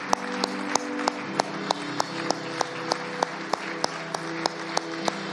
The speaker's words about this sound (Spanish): Démosle fuerte aplauso al Señor. Fuerte.